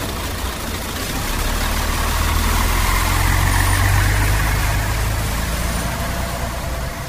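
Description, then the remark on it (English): A bus engine rumbles low and steady, swelling slightly as it revs and the bus pulls away, then easing back, with no voices present. “The newspaper killer gets on and the bus goes.”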